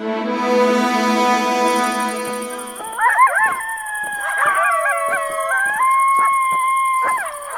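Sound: coyotes howling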